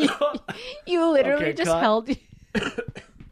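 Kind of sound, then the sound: human body sound, coughing into a microphone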